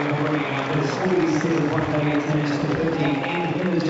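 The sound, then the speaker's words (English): A cricket crowd applauds Ross Taylor's 8,008th one-day run in a steady, continuous wash of clapping and cheering that holds an even loudness for several seconds, with murmured voices mixed into the noise. “He'll have his 8,008th one-day run, and gets an applause for that as well.”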